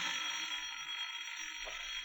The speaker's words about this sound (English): Well, there's the phone now.